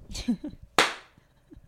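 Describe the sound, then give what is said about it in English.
A single sharp hand clap, done as a clap test, cracks out loud and bright, then rings off quickly. A brief bit of voice comes just before it. “All right, let's do the clap test.”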